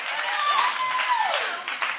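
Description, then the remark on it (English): An audience claps steadily, a dense, even wash of applause lasting the whole two seconds, with a thin sustained tone gliding downward beneath it. “Clap it up some more.”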